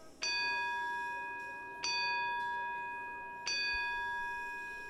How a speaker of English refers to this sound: Listeners, those chimes mean that the presentation is about to begin.